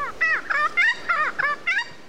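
A regent honeyeater mimics other species' calls, giving six quick, harsh, nasal phrases in a steady, rapid rhythm, loud with no talking.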